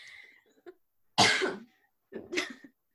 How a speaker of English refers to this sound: because I'm going to be coughing a lot because I still have that, like. Corona.